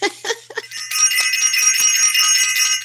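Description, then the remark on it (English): A short burst of voice gives way to a bright, continuous bell ringing loudly, its shimmering metallic tone held steady for about two seconds. “Yeah, had to give the bell for self-invested because it's definitely going down.”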